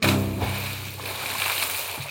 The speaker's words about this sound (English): Until, at last, the axe loosened from the wood, went flying through the air, and landed in the swift, deep river with a splash.